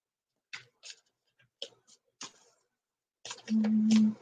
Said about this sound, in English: And it helps to hum sometimes when the cards don't come out right away, because sometimes they don't. Sometimes you just have to keep shuffling.